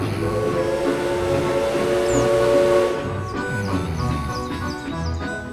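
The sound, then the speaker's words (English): A steam train's long, steady whistle sounds loudly for a few seconds, then gives way to rushing hiss and rapid high squeals and clanks as the train pulls out of the station. “From the other side of the building came a series of tremendous hisses and squeals, then a whistle as the train pulled out of the station.”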